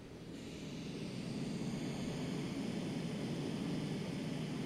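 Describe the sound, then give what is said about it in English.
Steady pink noise played from an app, a smooth, continuous rushing hiss with a soft roar underneath, fades in within the first half second and then holds at an even, moderate level with no voices. “I'm going to pull up pink noise and then I'm going to pull up brown noise and we're going to see if we can hear a difference.”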